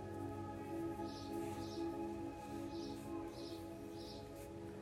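Several soft, high bird chirps, about five short calls in an irregular rhythm, drift over a steady, humming tonal drone that fills the background.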